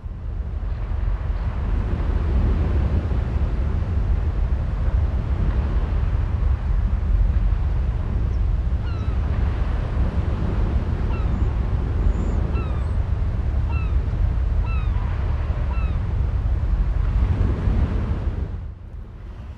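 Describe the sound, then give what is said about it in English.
A continuous roar of sea wind and rolling ocean waves fills the whole 30 seconds, steady and loud, with faint high bird cries drifting through midway before it fades at the end. “Here is 30 full seconds of fresh sea air.”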